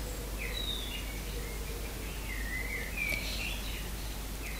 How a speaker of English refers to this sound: We have these amazing birds. Just serenading us.